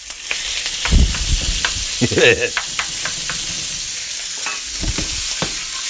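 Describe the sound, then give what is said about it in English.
Browned sausage and chicken for gumbo sauté in a pan, a continuous crackling hiss broken by louder scrapes and clanks as the food is stirred, with a few brief thumps. “Alright, so that is going to saute a little bit.”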